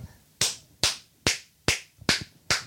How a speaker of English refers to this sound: Okay, but let's clap so I know where to go.